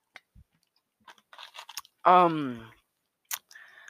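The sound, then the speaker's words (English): Sipping of a Mango Pepsi: faint clicks and small slurping, swallowing mouth noises, then a short voiced 'ahh' of satisfaction, followed by a few more quiet mouth sounds. “I am drinking Mango Pepsi because I was gonna take a sip.”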